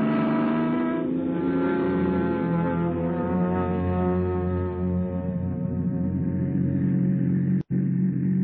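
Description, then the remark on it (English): A car engine runs with a steady, loud, low rumble as the car drives off on a vacation trip, its droning tone shifting slightly in pitch, briefly cutting out near the end. No one speaks. “Vacation, here we come. Come on, car, let's go.”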